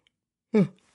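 A short, breathy vocal yawn rises abruptly and fades out over a fraction of a second, fairly loud, with silence around it.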